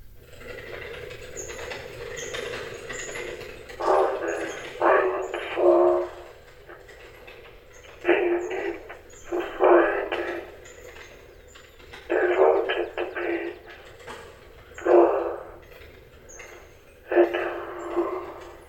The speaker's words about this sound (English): crank's turned, the machinery inside's supposed to produce a sort of spoken message, like a giant music box, but in this case, reproducing a human voice. Seems an impressive accomplishment for a post-war kinetic sculpture.